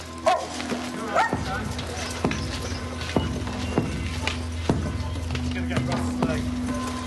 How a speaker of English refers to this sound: Being attacked by dogs already.